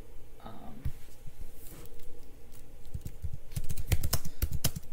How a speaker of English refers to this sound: But yeah, loud typing.